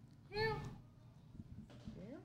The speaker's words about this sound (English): Meow. He's a sphinx cat. Oh, look at him.